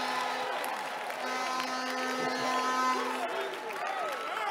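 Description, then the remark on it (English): An audience stands and claps and shouts together to the Lord, celebrating Jesus, a dense, steady wash of applause and raised voices with whoops rising above it, over sustained tones that continue throughout. “Stand to your feet and give the Lord a clap and a shout.”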